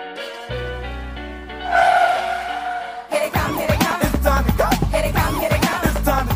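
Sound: car driving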